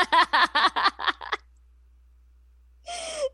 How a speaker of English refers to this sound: That was a big sneeze.